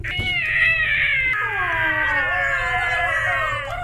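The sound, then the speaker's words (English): Two goblins scream as they burn after being hit by a fire spell whose flames spread into thickets, shrill and warbling, holding long quavering cries that bend downward in pitch. Loud and continuous for several seconds, with a faint low rumble beneath and no talking. “As the greenery starts cooking, and you hear two dual screams just go.”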